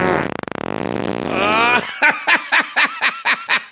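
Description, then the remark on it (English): A loud, buzzy fart sound effect from a sound effect machine rasps for nearly two seconds, followed by a string of about eight rhythmic, pulsing laughter-like bursts. “That's just obviously, that was a fart from the...”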